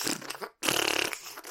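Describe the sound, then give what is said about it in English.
A person mimics a fart with their mouth: a short sputter, a brief pause, then a longer buzzing, rattling blat that trails off, fairly loud. “like, it starts farting, getting all chunky and shit. It's just like gas is going everywhere, and it's all coming outside of her neck, and it's all just kind of crazy disgusting at the same time.”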